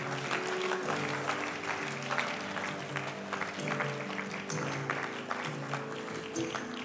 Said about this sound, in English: One more clap offering for God. Come on, thank you, Lord.